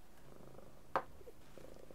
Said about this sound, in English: My cat can sense I'm getting distressed. She's purring. I really hope the microphone's not so sensitive as picking up the purrs. I'm going to have a hell of a time editing if I have to edit around purrs.